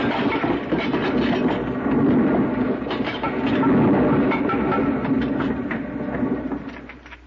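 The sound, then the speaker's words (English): Rocks collapse into a pile of rubble in a long, steady rumbling roar dense with clattering, rattling debris, then the noise tapers off at the end. No voices. “Here, let me help you out of this pile of rubble.”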